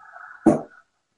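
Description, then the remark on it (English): A dog being petted lets out a soft, drawn-out whine that ends in one short, louder snort or huff, with no talking over it. “my wife's dog's right there”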